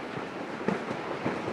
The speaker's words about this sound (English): Because it's, okay, now I know why I'm playing the train.